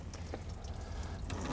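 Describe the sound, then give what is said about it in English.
Water runs and trickles steadily out of a sewer tank flush hose connection, a continuous splashing drain with a low rumble underneath and occasional drips, no voices. “Make sure that you run all that water out of there.”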